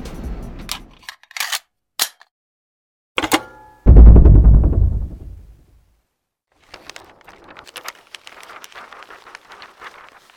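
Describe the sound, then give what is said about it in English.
A few sharp clicks, then a loud pop as a drink can is cracked open, followed by a rush of hiss that fades, and later a soft, steady crackle of fizzing bubbles. “I think I hear you cracking a can over there.”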